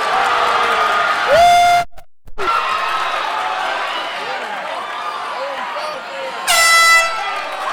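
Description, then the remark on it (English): A loud, harsh fight round buzzer blares for about a second at a fight event, then sounds again near the end, over a steady roar of crowd noise and chatter. “Once again, I'm really glad they got this buzzer figured out, because that 2x4 and brake drum was just not working for anybody.”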